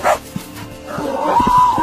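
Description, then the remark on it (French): A dog barks and yaps excitedly as it attacks a cow, in a rapid, uneven string of sharp barks, loud and agitated, with a thin whine running underneath toward the end. “Regarde, un chien qui attaque une vache sacrée.”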